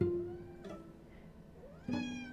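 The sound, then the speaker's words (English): A cat on a desk meows, two drawn-out, tonal calls, one at the start and a louder one near the end, with a quiet stretch between and no talking. “So without further ado, I'm going to get my cat to calm down and get off of my desk.”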